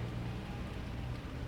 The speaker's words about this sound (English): Damn, it is raining.